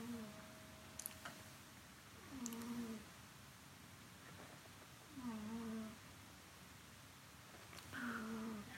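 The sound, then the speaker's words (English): A cat named Oreo snoring softly, with three slow, evenly spaced breaths, each a faint whistling, slightly wheezy tone that dips in pitch. It is quiet against a low background hiss. “That is Oreo snoring.”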